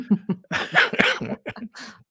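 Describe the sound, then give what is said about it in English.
A short run of loud coughs: two light ones, then a cluster of harsher, throaty hacks, tapering into a few smaller coughs and a breathy finish. “Oh my gosh, now I cough.”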